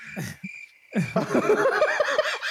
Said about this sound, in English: Oh, God, you hit me with the crickets?